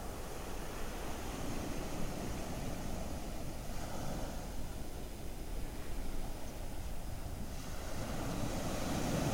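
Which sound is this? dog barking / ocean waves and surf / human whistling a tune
ocean waves and surf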